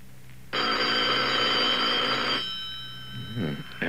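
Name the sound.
telephone bell ringing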